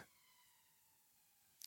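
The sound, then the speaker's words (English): A police siren holds a steady, high-pitched tone that lingers faintly and slowly fades, ending with a brief sharp crackle. No one speaks. “Oh, got to stop because there's a siren.”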